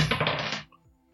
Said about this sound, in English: All right, so I'm going to roll a dice to see who it is, and then draw a card 1 through 11 to see what quote you have.